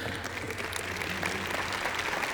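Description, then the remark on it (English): Steady audience applause for friends coming onto the platform in the morning to help preach a message, a dense wash of many hands clapping at an even, sustained level for the whole stretch, with no voices standing out. “Can we give it up for our friends coming onto the platform this morning?”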